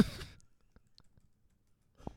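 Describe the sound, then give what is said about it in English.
Faint, irregular keyboard taps, several quick clicks spaced unevenly, with short bursts of breathy noise at the very start and end, as someone types a search for Bernie Sanders. “Just typing in Bernie Sanders.”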